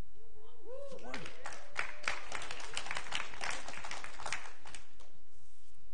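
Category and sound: crowd, audience applause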